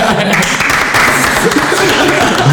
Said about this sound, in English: Insane. That was brilliant. That's the first time anyone's got like applauded. I'm so proud.